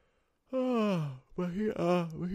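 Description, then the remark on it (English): A person yawns aloud twice in close succession: a long, drawn-out voiced yawn sliding downward in pitch, then a second wavering one. Both are fairly loud, with no other sounds. “Good yawns.”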